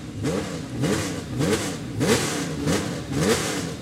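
A Ferrari 488 Challenge race car, a modern-day Le Mans car driven by Marino Franchitti, revs repeatedly in sharp, rising bursts, about six throttle blips in quick succession, loud, with a hissing whoosh of whistling turbos at the top of each rev and no talking.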